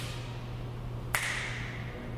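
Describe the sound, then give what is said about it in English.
A single sharp finger snap cracks out in the Africa exhibit hall, followed by a bright ringing echo that fades over about a second, all above a low, steady background hum. “Here, the echo's cool.”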